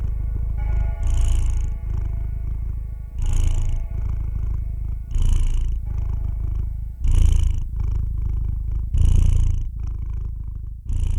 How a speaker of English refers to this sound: Midnight purred even louder as he stroked her head gently.